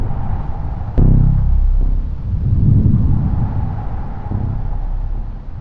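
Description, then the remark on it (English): A sudden low boom breaks out, then rolls into a long, deep rumble of thunder that swells and fades over several seconds, with steady wind noise underneath and no voices. The thunder comes from a storm front rolling in. “A storm front is rolling in.”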